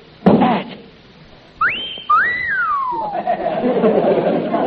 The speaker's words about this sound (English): What was that? A wolf whistle. That means you did as well as an 18-year-old girl.